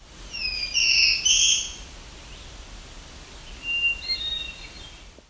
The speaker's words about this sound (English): This was a black-throated blue warbler and a hermit thrush.